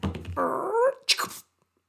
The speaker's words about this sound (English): Why are you barking? Oh, is that the reason? What's the reason? Oh, you want a treat.